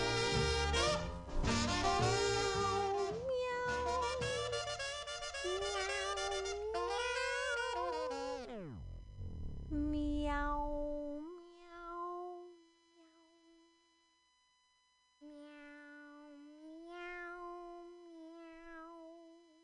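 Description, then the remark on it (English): A dense burst of music cuts off abruptly, then a cat gives a few drawn-out, wavering meows, clear, with short pauses between them and nothing else playing. “Meow. Meow, meow.”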